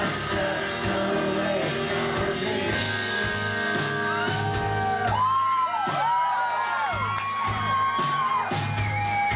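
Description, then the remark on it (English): A large concert crowd roars continuously, many voices singing along together with rising and falling whoops and cheers swelling over a dense, steady wall of noise. “Oh, what a fun crowd.”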